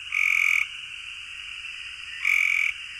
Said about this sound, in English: They look identical, and the only way to tell the difference is the call. So this is what our Cope's gray tree frog sounds like.